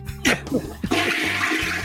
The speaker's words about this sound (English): At least he flushed.